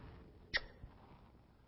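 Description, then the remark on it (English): A single short, sharp sneeze bursts out against a quiet background, followed by a faint softer sound a moment later. “Bless you, brother.”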